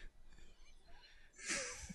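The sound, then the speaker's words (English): Heavy breathing: a soft, airy rasp through the first part, then a louder, rushing breath near the end. No one speaks. “That was a heavy breathing.”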